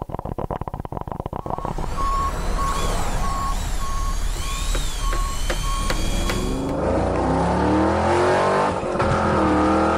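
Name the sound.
car engine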